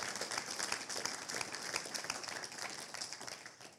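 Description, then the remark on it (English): A church audience applauds steadily to encourage the church's workers, a dense wash of many hands clapping at once, sustained and fairly even throughout with no voices standing out. “These are the guys I'd love some encouragement to flow towards.”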